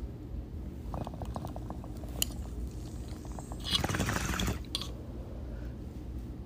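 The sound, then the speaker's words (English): Steady gurgling of water bubbling through a bong as someone takes a hit, for several seconds, with a brief louder rush of air partway through. No one speaks. “Anyways, let's take a rip, guys.”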